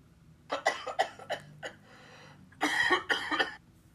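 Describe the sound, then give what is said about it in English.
A bout of harsh coughing: several short, sharp coughs in quick succession, a brief pause, then a longer, rougher coughing fit with no talking. “Gum disease, lung cancer, a weakened immune system, heart attacks, coughing.”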